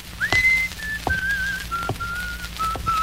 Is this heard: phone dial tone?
no